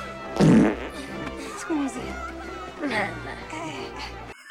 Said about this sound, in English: Here's your farts for all you fart hounds. At 11 minutes and 33 seconds, there's a fart.